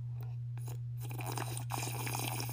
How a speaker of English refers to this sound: Apple cider vinegar tonic sip break.